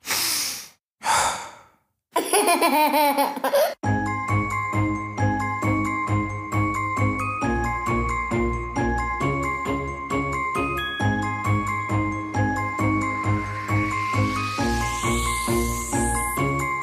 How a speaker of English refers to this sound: Sleigh bells ringing, diamonds blinging.